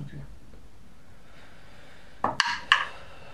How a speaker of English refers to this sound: The dice keep rolling.